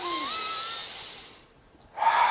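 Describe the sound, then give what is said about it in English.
A slow, airy exhale trails off into a brief pause, then a deep, noisy inhale begins: belly breathing with one hand on the belly and one on the chest. The breathing is heard alone, with no talking. “So you put a hand on your belly, one on your chest, and then you go, only belly breathing is the first step.”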